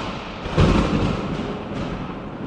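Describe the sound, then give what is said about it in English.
A deep thunder sound effect cracks in with a loud rumbling burst, then keeps growling and rolling steadily through the rest of the short clip, with no voices over it. “The Thunder Round. Insert. Sound effect here.”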